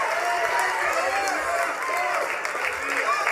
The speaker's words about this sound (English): If you receive it, let your hand clap and shout. Be the loudest. Let's take 15 seconds and celebrate ahead of time. Clap your hands, all ye people.